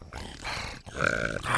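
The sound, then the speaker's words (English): A human voice makes a raspy, rattling snarl with the soft palate at the back of the throat in two sustained bursts, the second louder and harsher, imitating an animal's growl. “So yeah, so it really the soft palate and can be used to effect some really cool snarling effects.”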